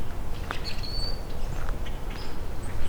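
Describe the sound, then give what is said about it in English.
A rusty blackbird sings a few thin, high, squeaky notes, spaced apart, over a steady low outdoor rumble. “Okay, so I'm coming up on Rusty Blackbird.”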